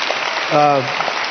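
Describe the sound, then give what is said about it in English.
A steady wash of audience applause from a church audience, fairly loud and dense, with a single voice briefly calling out over the clapping midway through. “And the yeah, you can clap for this place.”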